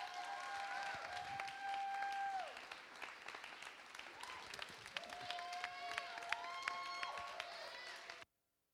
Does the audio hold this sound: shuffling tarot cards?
no